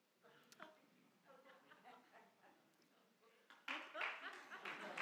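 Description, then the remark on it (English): An audience breaks into applause partway through, a dense burst of clapping that swells and keeps going, following a stretch of indistinct voices and murmuring from the room. “Sure, you can applaud that.”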